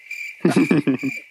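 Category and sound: insect, cricket chirping sound effect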